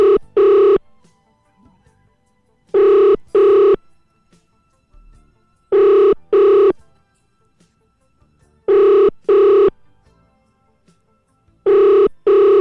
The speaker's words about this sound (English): Hopefully it will ring and he will pick up. It's ringing